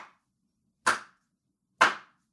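A single person's slow clap: two sharp, loud hand claps about a second apart, with the tail of an earlier clap at the start and silence between.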